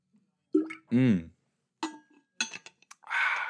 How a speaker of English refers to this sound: I'm gonna take a sip of water now. So if you hate the sounds of drinking water, turn this off.